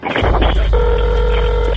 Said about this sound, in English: The 911 call came in around 10:50 p.m. It's a female hyperventilating. Okay, calm down. Where are you at? And then the phone goes dead.